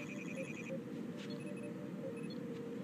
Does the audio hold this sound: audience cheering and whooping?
no